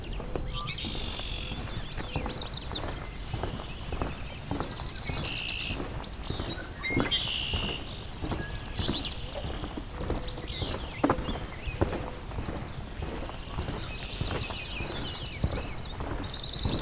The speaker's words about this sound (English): Fitzbue, willow flycatcher.